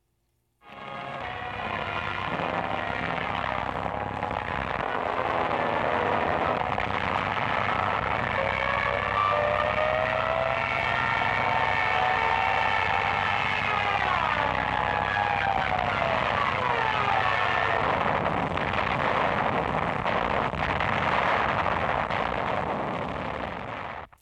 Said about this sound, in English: The German Luftwaffe in World War II had planes called dive bombers. And they would destroy buildings across Europe.